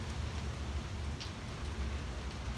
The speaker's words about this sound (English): It's raining through the slats here. I'm getting rained on. I'm getting dabbed on, guys. Shit, I might have to go inside.